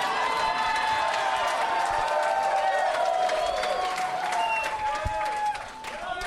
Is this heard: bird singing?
no